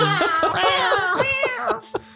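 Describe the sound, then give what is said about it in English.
A person imitates a cat, voicing a quick run of about five or six whiny, pitch-bending meows in succession, fairly loud, with no other sounds around them. “which you can't understand because I'm a cat. Meow, meow, meow, meow, meow.”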